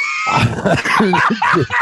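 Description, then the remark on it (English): A dog barks and yelps excitedly in a quick run of loud, high-pitched, harmonic bursts that fill nearly two seconds with only brief gaps between them. “Down, boy.”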